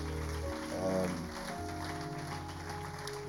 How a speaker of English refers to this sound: Let's give a round of applause to all our facilitators.